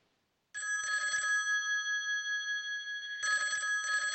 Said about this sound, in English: I think I hear the phone ringing. Do you wanna pick up and see who's calling into the show?